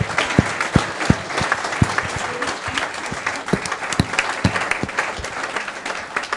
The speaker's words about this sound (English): I'll just ask Andy Sinton just to come on. We'll have a final word with you, Andy, if you'd like to come on. Round of applause for Andy Sinton.